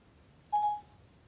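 A single short electronic chime from a smartphone's Siri voice assistant activating, a bright clean tone lasting a fraction of a second, heard alone over a quiet low background hum.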